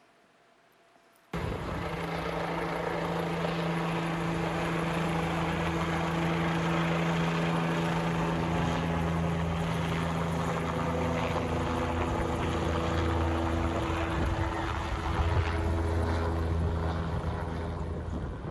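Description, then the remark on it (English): A rescue helicopter flying overhead during a life-flight rescue operation, recorded on a phone: its loud, steady engine and rotor roar kicks in abruptly and drones on continuously, a thick mechanical hum with a low throbbing beneath it and no voices. “But I want to show you, there was a helicopter rescue operation. Apparently someone needed to be life-flighted, and I was able to capture it with my phone.”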